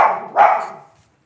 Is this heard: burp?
no